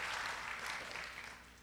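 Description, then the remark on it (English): An audience claps in a dense, steady wash of applause that sounds fairly soft, easing off slightly toward the end. No one speaks over it. “That's where your identity claps. Somebody do something.”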